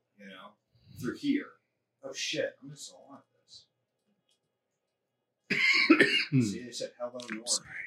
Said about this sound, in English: I have a cough. Right. It's just fine. I was kidding before. It's from popcorn.